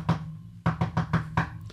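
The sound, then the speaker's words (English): Knocking on a door at an inn: a single rap, a short pause, then a quick run of five or six firm, evenly spaced knocks with a hollow, woody thud. No voices. “And a few minutes later, there was a knock on the door.”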